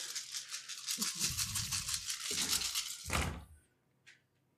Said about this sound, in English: Let's roll this. It is very weird for me to roll this many dice at one time. I can barely hold them, ladies and gentlemen.